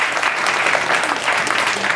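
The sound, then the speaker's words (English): Steady applause from a live audience, a dense wash of many hands clapping at a constant loud level throughout, with no voices standing out. “So, you know, live audience, red light fever, I'm all about it. I feel like round of applause, come on.”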